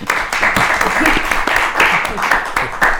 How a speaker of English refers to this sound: Let's give New Jersey a big round of applause.